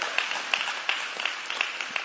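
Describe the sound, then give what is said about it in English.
An audience claps together in a steady, even rhythm, about three claps per second, over a continuous wash of crowd applause and noise. Moderately loud, with no voices standing out. “So let's give the streaming people another hand clap.”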